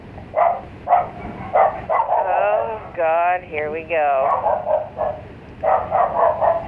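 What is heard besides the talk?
dog barking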